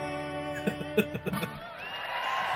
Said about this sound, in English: There's applause and everything.